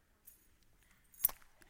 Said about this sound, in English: Could you toss me your keys there? That's too many keys.